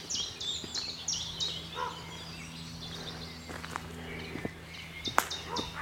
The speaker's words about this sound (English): Some ravens here. Ooh, raucous. Yeah, carrion crow. A bit of comparison.